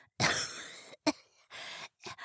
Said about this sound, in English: Roxy coughed.